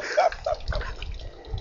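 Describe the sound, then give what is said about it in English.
Steady trickling of a small water feature, with a few brighter bubbling splashes early on over a continuous low wash of running water. “Where's she still hiding behind that water feature, is he?”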